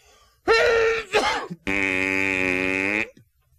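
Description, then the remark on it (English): A person imitates a whale sneeze by blowing against the meaty palm of the hand pressed to the cheek, fingers wrapped around the face: a loud, sputtering burst, a brief pause, then a long buzzing, wheezy blast that cuts off abruptly. “And it's the sound of a whale sneezing.”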